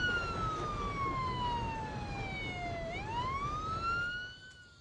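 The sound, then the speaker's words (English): A siren wails at a distance, its pitch sliding slowly down and then swinging back up in one long sweep over a steady low rumble of background noise. “Ethan grabs the ropes and begins to untie them as sirens blare in the distance.”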